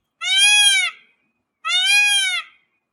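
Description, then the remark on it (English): Two loud, piercing screams from a peacock perched on a wire pole behind a house at night, each a strained, nasal wail lasting under a second, separated by a brief silence. No voices or other sounds accompany the calls. “Giant blue birds living outside your house yelling.”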